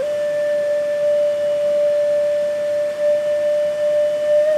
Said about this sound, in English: Is the flute player and his lone call. The call from the depths of his heart. Not a yearning, not a desire. An expression of the beauty, joy, and perfection that he feels.